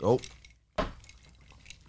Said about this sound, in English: Cheers. Cheers. Cheers, gentlemen. Clink. Clink.